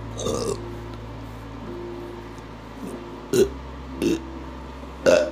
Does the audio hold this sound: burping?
yes